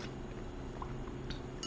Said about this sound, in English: I just want to say, I need another sip of cold brew, TBH.